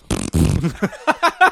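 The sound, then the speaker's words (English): A voice blows a loud, buzzy raspberry imitating a fart as a comic stand-in for singing, a rough sputtering burst of about half a second, followed by a few shorter voiced honks that trail off. “every time he sings, it's just a long, farty noise.”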